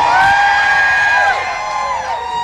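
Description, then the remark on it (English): A large crowd cheers and whoops loudly and steadily for the radio station K-Rock, a dense wash of high-pitched voices and shouts sustained throughout with no pauses. “And that crowd giving K-Rock some love.”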